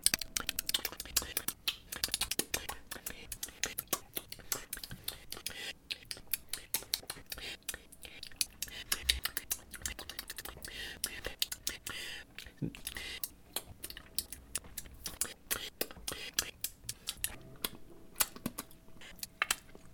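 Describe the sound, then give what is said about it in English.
A long run of quick, sharp tongue clicks, the kind made when starting a new sentence while recording, dozens of them in an irregular, dense patter like typing, fairly quiet and crisp, with faint breathy mouth noise between them and no words spoken. “Seems every time I go to start a new sentence, I make a tongue click like this.”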